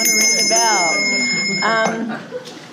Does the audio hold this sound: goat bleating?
no